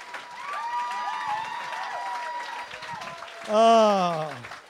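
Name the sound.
audience applause and cheering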